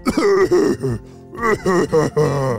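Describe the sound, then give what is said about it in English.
A voice imitates a monster's coughing fit: a string of gravelly, groaning coughs and throat-clearing bursts, fairly loud, with a brief pause midway before a second run. “The garden monster began to cough, and Tommy bounced into the air as he did.”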